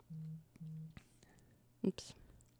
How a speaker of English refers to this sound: Oops. You all right? Yeah, my phone went.